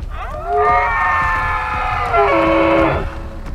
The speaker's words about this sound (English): Cord turns his head up and howls to the darkening sky.